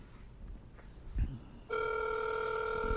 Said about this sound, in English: Let's give him a call here. Check in on a Saturday. Just checking in. You think I'll answer? Down that ringing. It's ringing.